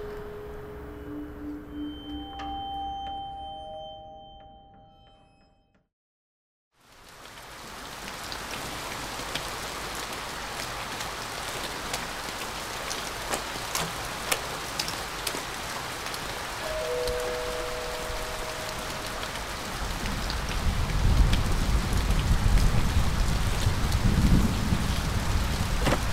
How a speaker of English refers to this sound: Dude, it's a friggin' shower out here.